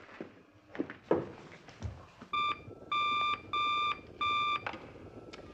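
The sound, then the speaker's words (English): The bat phone rings with an electronic, buzzy tone in four short, even bursts, fairly loud, after a few soft clunks and shuffling noises. No one speaks. “You know, the voice that answers the bat phone every now and then and asks us to hold on.”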